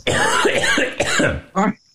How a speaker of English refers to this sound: Is it a wet cough? No, it's a dry cough because this is a very dry house in which I'm living.